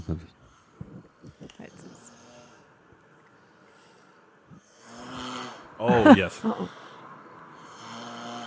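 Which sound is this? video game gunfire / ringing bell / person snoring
person snoring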